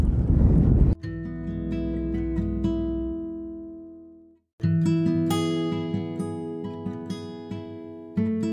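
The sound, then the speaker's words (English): A loud burst of low, rumbling wind buffets the microphone for about a second, then gives way to steady, sustained humming tones that fade out briefly and return. No one speaks. “Sorry about the wind, it's not making too much noise.”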